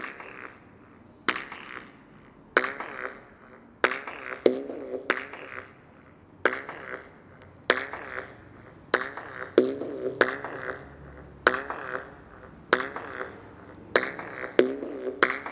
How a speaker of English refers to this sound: This groovy clap solo, or duo if you count the natural sound effect as my partner, this musicalized clap duo I recorded in the entrance pass of Schalvis Museum in Porto, a 25-meter-long tunnel-like path with one side open.